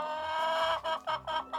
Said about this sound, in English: And let's just say that one particularly cantankerous chicken starts squawking. What the heck's wrong with that creature?